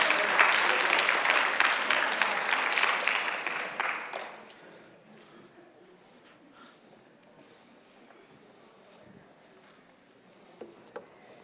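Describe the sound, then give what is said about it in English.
A room of people claps steadily for about four seconds, a dense patter of many hands, then the applause stops abruptly, leaving quiet room noise with a faint thump near the end. “You said, no, you don't have to clap.”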